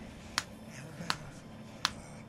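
Three crisp hand claps, evenly spaced about three-quarters of a second apart, each a single sharp smack standing out against a low, steady background hum with no talking.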